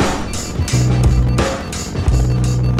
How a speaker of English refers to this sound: Ignition sequence start. 6, 5, 4, 3, 2, 1, 0. All engine running. Liftoff. We have a liftoff.